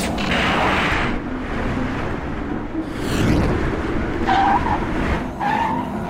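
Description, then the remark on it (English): A missile illegally fired by car number 45, Max Overload, launches with a loud roaring whoosh toward racing car number 21, Jack Nimble, whose tires skid and squeal amid engine noise and sharp high-pitched streaks as it dodges with a turbo leap, all loud with no talking. “Number 45, Max Overload, fired an illegal missile at car number 21, Jack Nimble.”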